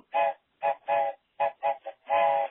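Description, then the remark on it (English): A voice imitates a train whistle, with seven short, loud, tonal hoots in an uneven chugging rhythm, on its own, each blast rising and falling quickly. “Train alert.”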